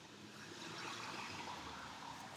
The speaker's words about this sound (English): That's a car. It's raining a little bit. I don't know if it's raining hard enough for you to hear it though. It's another car. It's another car.